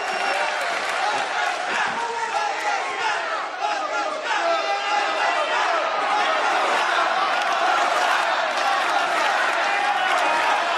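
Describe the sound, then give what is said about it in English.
On the Miz TV segment, after an infant is introduced, a large audience claps and cheers in a dense, steady roar that stays loud and unbroken for about eleven seconds, with scattered shouts rising out of the crowd noise. “Oh, clap, Byron.”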